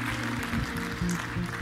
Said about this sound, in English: Can we give Summit Blairsville a big round of applause today? We love you guys.